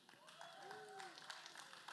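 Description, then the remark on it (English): Scattered hand clapping from a church audience praising God, uneven and moderately loud, with a few voices calling out over it. “I guess a hand clap will work.”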